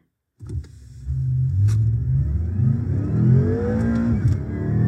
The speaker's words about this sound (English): So I think it's great that there's all these cars out here now that will actually pipe in, you know, a fake engine noise into the interior. So here's a BMW M5.